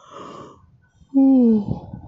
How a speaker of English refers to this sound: Shit, I'm yawning a lot. I actually hate to yawn.